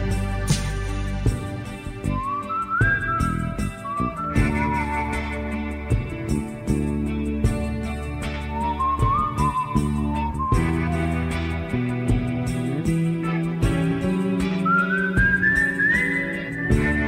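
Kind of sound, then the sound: whistled melody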